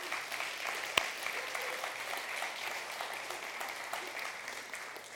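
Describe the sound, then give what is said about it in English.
A crowd applauds steadily for mothers for about five seconds, a dense wash of many hands clapping with one sharp louder clap near the start, and no one speaking. “So moms, we give it up for you.”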